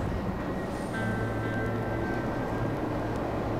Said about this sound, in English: You hear that train noise still? Big on the train noise on that track. And fade right back into that train noise if you want.